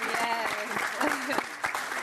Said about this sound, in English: Let's give one last final round of applause for our speakers.